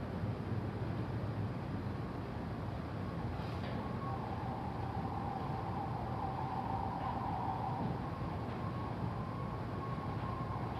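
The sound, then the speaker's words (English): An emergency vehicle siren wails faintly outside, its steady tone rising and falling softly over a constant low background rumble, with no one speaking. “The breath is a way of collecting the attention, but you can still notice and include the sounds, the sirens, sounds in the room.”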